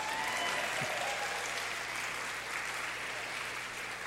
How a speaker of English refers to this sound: At this time, let's have all the fathers stand. So everyone that's a father, grandfather, stand up. Okay, now we want the ladies to clap for you.